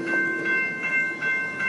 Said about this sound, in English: Can you still hear me? That was really loud. That's what they call a train.